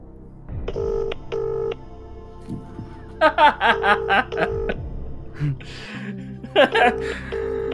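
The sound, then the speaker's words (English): A few short, steady telephone dialing tones beep as someone phones a friend, followed by choppy bursts of voiced sound, like stifled laughter, with more phone tones faintly heard. “I'm going to phone a friend. going to phone this person.”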